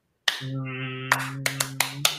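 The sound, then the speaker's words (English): A string of sharp claps demonstrating the rhythmic 'car wash clap' used at a poetry slam, landing in a loose rhythm, six quick hits over about two seconds, layered over a steady low humming tone that holds throughout. “And so the car wash clap started.”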